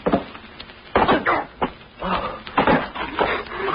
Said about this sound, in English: What happened? We fell through a hole in the floor. It was covered with hay.